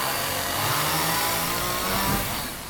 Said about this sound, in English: I'm chainsawing my way out of this.